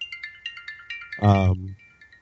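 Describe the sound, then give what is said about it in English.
A phone rings with a quick melodic pattern of bright, repeating electronic tones. Partway through, a loud voice briefly cuts over it, and the tune then continues faintly. “Whose phone is that?”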